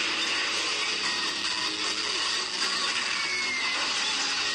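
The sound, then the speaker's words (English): A dense, steady engine roar drives on for several seconds at constant loudness, with faint higher-pitched laser-like zaps flickering through the noise. No one speaks. “The sound there is obviously engine driving and lasers being fired.”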